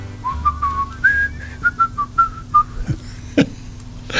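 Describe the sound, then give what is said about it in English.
Someone whistles a short, bright melody of quick successive notes rising and falling, clear, with a low steady hum underneath and a couple of soft knocks near the end. “That's me whistling, by the way.”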